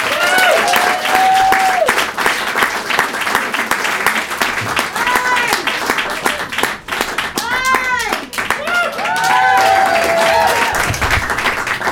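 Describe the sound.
A crowd applauds steadily and loudly for the full length as a comic is brought to the stage at a comedy show in Portland, a dense wash of many hands clapping, with scattered whoops and cheering voices rising over it.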